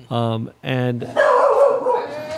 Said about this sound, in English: Barking good. But you know, there's something really like classic and iconic about a dog barking at the mailman. Yeah, especially a corgi.